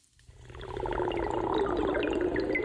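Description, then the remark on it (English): Water pours steadily into a cup for a couple of seconds, a bubbling trickle whose pitch rises slightly as the cup fills. “I'm going to have a bit of water, everyone.”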